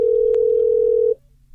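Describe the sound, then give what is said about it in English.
A steady telephone dial tone hums continuously and clearly for about a second as a call is placed, then cuts off abruptly, with a faint click partway through and no voices. “I mean, well, we're about to go up against her right now because I say we get her on the phone.”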